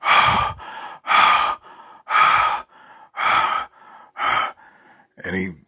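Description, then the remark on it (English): A person imitates hard, heavy breathing, as of someone who woke up breathing hard: loud, harsh gasping inhales alternating with quieter exhales in a steady rhythm, about five deep breaths ending in a raspy, voiced breath. “start breathing hard.”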